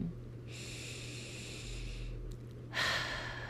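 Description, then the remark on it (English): A slow, deep breath drawn in with a soft hiss of air, a brief pause, then a stronger, airier exhale during a breathing exercise, fairly quiet, with no talking. “So, like I said, take a few deep breaths and breathe out stress, anxiety, worry, and fear, and negativity.”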